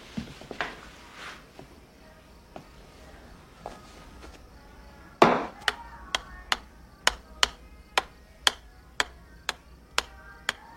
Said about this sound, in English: Clock's ticking, fellas.